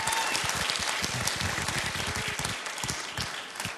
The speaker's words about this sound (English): If you agree, you could just clap your hands or something. Let me know you're paying attention.